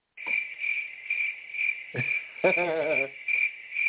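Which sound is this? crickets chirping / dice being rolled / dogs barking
crickets chirping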